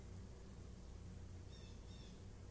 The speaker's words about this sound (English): you hear the bird? It's that simple. That's all. That's all. It's just the sound of a bird.